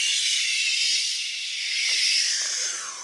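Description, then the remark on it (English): A long, steady whoosh of air blown out in one continuous breath while pretending to fly like an airplane, hissy and bright, holding at an even loudness for about three seconds with no talking. “We'll suck in all the air around us, and as we blow the air out, we'll go whoosh, whoosh.”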